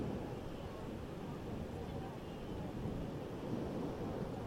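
A steady, continuous roar of ocean waves washing onto a beach, heavy and rumbling with a breezy hiss and no clear breaks between swells, with a faint voice murmuring underneath.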